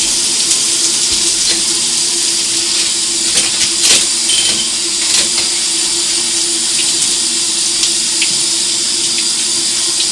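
A shower runs steadily, its spray a continuous, fairly loud hiss that stays even throughout with only small splashy flickers. No one speaks.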